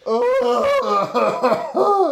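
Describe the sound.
A voice imitates an eerie cough with a string of drawn-out, wavering vocal bursts, loud and tonal, almost laugh-like, over about two seconds.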